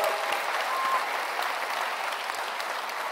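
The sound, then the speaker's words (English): Steady applause from a sizable audience at a church, a dense wash of clapping that stays loud and even for the full few seconds without any voices standing out, given in appreciation of a church staff member. “Caleb, yes, give him a round of applause.”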